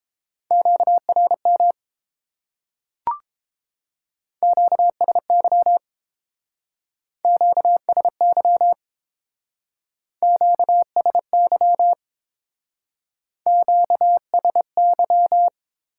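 A clean, steady Morse code tone keys out quick dots and dashes at 22 words per minute in five short bursts, separated by brief silences, with a single sharp click early on. No voices.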